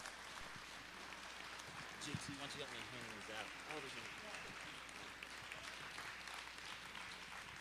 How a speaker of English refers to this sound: And so these guys deserve a little recognition. So can we give these guys a huge hand of applause?